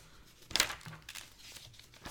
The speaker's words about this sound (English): Man, flicking through my notes is just insane.